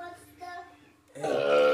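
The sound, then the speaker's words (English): A loud, rough, resonant burp erupts abruptly after a brief stretch of quieter vocal sounds, lasting until the end. “They're burping.”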